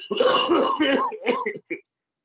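Harsh coughing and throat clearing in a cluster of rough bursts over about a second and a half, ending with one short hack before silence.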